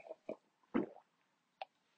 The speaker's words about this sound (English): I'm just going to take my last wee sip of coffee here, wee bit of wee boost.